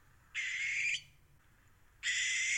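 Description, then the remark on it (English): A barn owl gives two long, harsh, raspy screeches, each lasting over half a second, separated by a brief quiet gap; the second cuts off at the end. Loud, with no talking. “But this is what it sounded like.”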